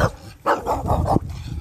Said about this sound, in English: You're only greeted by the neighbor's dog.